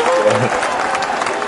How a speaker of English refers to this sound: I have to do some applause on this part.